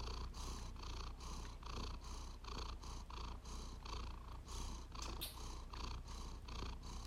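cat purring

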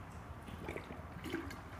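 water

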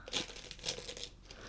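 tissue paper crinkling

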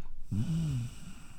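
dog snoring

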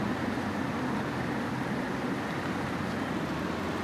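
street traffic

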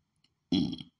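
burp

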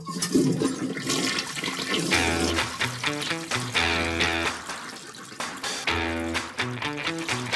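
toilet flushing

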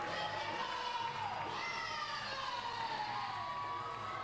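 crowd cheering wildly

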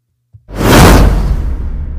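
swoosh sound effect

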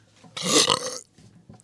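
loud burp

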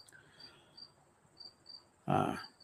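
crickets chirping outdoors

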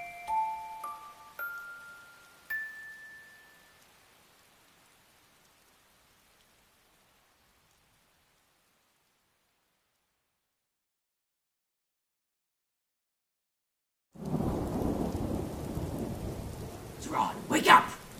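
rain falling

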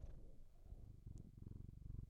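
cat purring

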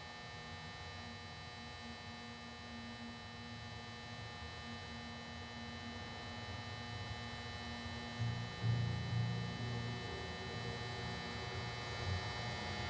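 electrical hum

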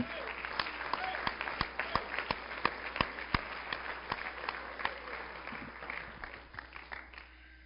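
audience hand clapping

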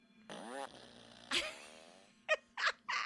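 fart noise

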